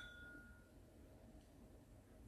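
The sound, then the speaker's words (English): A single light clink of glasses in a toast, with a soft ringing tone that fades within a second, heard faintly over a low, steady hum with no voices. “So, cheers. Cheers, brother.”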